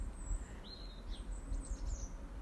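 Birds sing in a garden, with a few high, quick chirps and thin whistling phrases repeating over a steady low outdoor rumble. The birdsong is fairly soft, and nobody speaks.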